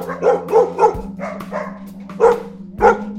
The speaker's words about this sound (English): I remember I was in shock. I saw so many dogs barking and barking. And I was so sad, like I understood it's not a good place for them.